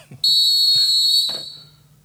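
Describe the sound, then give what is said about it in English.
A loud, shrill whistle at the end of a song blasts suddenly and holds one steady high pitch for about a second, then trails off quickly into a fading echo. No one speaks. “That whistle gets me every time at the …'s end there.”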